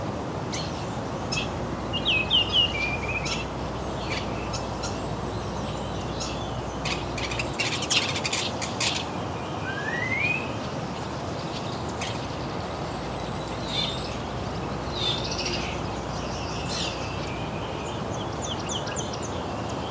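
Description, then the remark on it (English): A Wilson's Warbler sings bright, rapid chattering phrases amid other scattered bird chirps, over a steady rushing background like wind or running water. “I think that's more Wilson's Warbler.”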